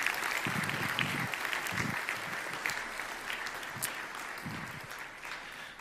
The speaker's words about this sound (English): Let's give her one more round of applause if we would.